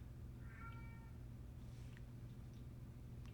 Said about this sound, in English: We got a loud one, Slender Cat, over there. Yeah, I got a loud meower.